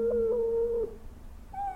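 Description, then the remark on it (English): A dog named Baxter howls in a long, sustained wail that holds steady for almost a second, then breaks off, followed by a brief rising whine near the end. “Stupid dog. Should have had him neutered.”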